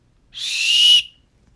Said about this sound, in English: Referee blows the final whistle.